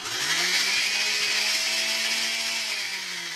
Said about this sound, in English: Hershey and Chase dumped all their hard work into a metal-wearing blender, hardly different than your standard kitchen blender, and hit the power button.